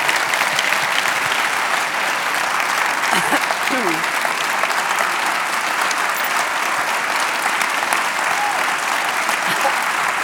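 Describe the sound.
A full-house theatre audience gives sustained, dense applause, a steady wash of clapping at even loudness for the whole stretch, with a brief voice or whistle-like sound rising faintly underneath partway through.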